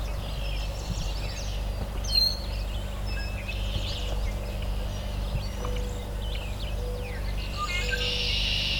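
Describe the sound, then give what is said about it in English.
A willow flycatcher sings its brisk, buzzy fitz-bew song a few times, with other faint bird calls and a steady low rumble underneath. “Okay, there's our Fitzbew, a willow flycatcher.”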